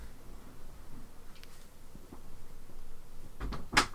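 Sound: door being pushed shut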